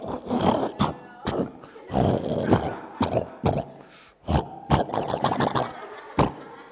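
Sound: voice imitating loud snoring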